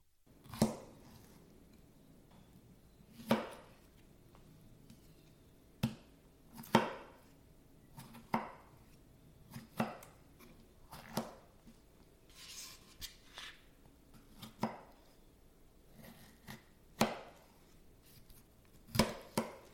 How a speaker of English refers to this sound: Chopping tomatoes.